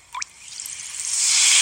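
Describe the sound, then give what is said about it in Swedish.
Soda being poured into a glass as an ASMR sound: a quick liquid plop at the start, then a bright fizzing hiss that swells and keeps building. No voices. “Men det är någon som häller upp.”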